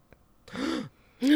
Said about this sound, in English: Like, sorry, she's like, I was waiting. I didn't know it was my turn to gasp.